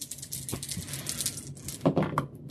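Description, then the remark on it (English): Three six-sided dice (a 3d6 roll) rattle and clatter across a hard tabletop during a tabletop game, a dense burst of sharp little clicks and knocks, fairly loud, with no voices. “All right, roll 3d6.”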